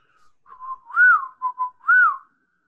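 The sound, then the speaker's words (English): A person whistles a short tune of a few rising and falling notes as a signal, clear, with brief gaps between phrases and nothing else in the background. “You hear somebody whistling to you. I'll mimic the whistle.”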